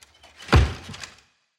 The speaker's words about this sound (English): Their counselor, Craig, jumped down from his loft, ran to the door, and slammed it shut.